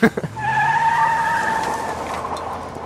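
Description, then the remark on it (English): A sports car skids with a loud, sustained high-pitched tire squeal lasting a couple of seconds, over a low engine rumble that slowly drops in pitch. “I drive a Miata. A Miata? So, yeah. Yeah, a sports car.”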